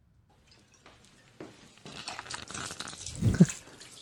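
A crackling, scraping rush builds over a few seconds as a sled, doused in liquor and set on fire, slides and bumps down a flight of stairs, ending in a louder heavy thud near the end. No one speaks.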